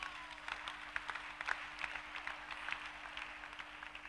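A church audience applauds its choir after the choir sang, many hands clapping in a dense, continuous patter with a few sharper claps standing out, moderately loud and with no talking.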